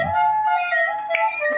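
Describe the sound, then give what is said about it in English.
A parrot's steady, flute-like whistled tone holds throughout, interrupted by a single sharp click partway through, the bird's imitation of a lighter being struck. No one speaks. “That's the parrot making the lighter sound.”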